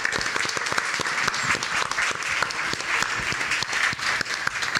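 A crowd applauds steadily for about five seconds, a dense, even patter of many hands clapping at a fairly loud level, with no voices standing out.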